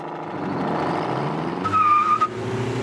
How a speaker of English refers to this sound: Now, ignition. Listen to that motor purr.